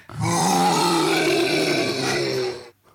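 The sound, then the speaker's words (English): A single deep, drawn-out growling roar made by actress Bryce Dallas Howard imitating a lion, slowed down with a voice effect creator so it sounds low and rumbling, lasting a few seconds and fading at the end. “That was her doing a lion's roar, and then slowed down.”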